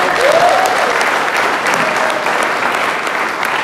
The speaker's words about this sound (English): Can't you stand quickly? Give them a big cheer.